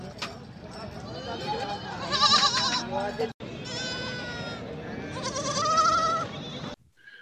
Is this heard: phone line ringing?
no